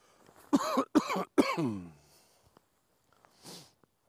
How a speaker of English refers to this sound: was that a COVID cough or not?